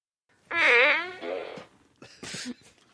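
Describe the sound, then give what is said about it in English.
A loud, buzzy fart noise from a fart gun, with a wavering pitch, blares for about a second, then trails into a few shorter, rougher sputters and a final raspy burst. “Put the fart gun down, no one will get hurt.”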